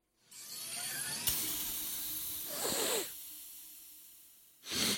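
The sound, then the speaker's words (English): A long, steady hissing spray from a pressurized bottle of Dr. Danziger's all-natural energizing dust swells and fades over a few seconds, then a second short, loud burst of spray follows after a brief pause. “That's when I take a blast of Dr. Danziger's all-natural energizing dust, hand-congealed in Ganymede Oceanic Laboratory pods and contained in pressurized spray bottles for convenient use.”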